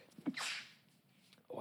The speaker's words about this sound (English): Wow. Was that the first sneeze? On our podcast.